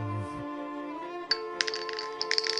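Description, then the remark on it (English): Bright, glassy tinkles scatter irregularly over a sustained ringing tone as mine crystals fall and clink against each other after chests are blasted upward, moderately loud, with no voices. “As the chests fly upwards, tinkling noises can be heard as new mine crystals fall.”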